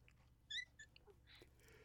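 A female pet cat gives a short, high-pitched squeak followed by a second, briefer chirp, both faint against quiet background hiss, with a soft rustling burst shortly after and no talking.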